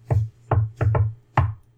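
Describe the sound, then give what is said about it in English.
Five sharp, hollow knocks on a door in an uneven rhythm, two quick pairs and then a final rap, each thudding with a low resonant body. They are fairly loud, with no one speaking. “Let's go knock on the door.”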